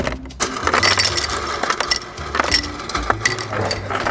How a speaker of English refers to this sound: Let's get some ice. Ice, baby. We have one of these fridges that makes ice for us.